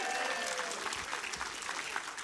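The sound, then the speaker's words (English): An audience claps and applauds together to applaud the Lord, a dense, steady wash of many hands with faint crowd murmur, sustained evenly throughout. “Now make some noise, applaud the Lord.”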